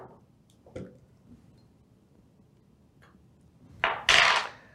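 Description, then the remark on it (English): A lid being twisted off a plastic water bottle: a couple of faint clicks, then a short, louder burst of crackling plastic near the end. “Oh, I got to take the lid off.”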